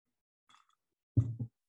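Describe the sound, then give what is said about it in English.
A quick, faint slurp of iced tea being sipped, followed about half a second later by a louder, low, throaty gulp as it is swallowed. No one speaks. “I'm going to take a sip of my iced tea.”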